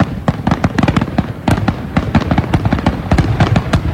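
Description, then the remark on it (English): A dense, rapid barrage of fireworks bursts at the finale of a fireworks show at the Hancock County Fairgrounds, loud booms and crackling pops piling on top of one another continuously for several seconds, with no voices. “The sound of the finale to the fireworks show at the Hancock County Fairgrounds over the weekend.”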